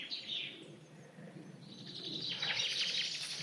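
A yellowhammer sings on the edge of woods in March, a high, thin song of quick repeated notes that grows louder and busier toward the end, with a steady low rumble underneath and no one talking.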